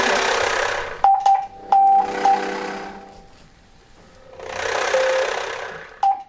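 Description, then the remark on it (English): Morse code beeps spelling out the word 'feel' in a Morse conversation: a steady mid-pitched tone keyed in short and long pulses, irregularly spaced, over loud swells of rushing noise that rise and fade in the background. “We're going to spell feel. We're going to have a conversation. Morse conversation.”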